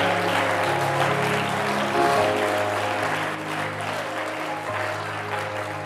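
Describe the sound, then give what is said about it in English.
An audience claps in praise of the Lord in a dense, continuous wash of hand claps lasting several seconds, with sustained low organ or keyboard chords holding underneath and no one speaking. “Somebody give the Lord a hand clap of praise for who He is.”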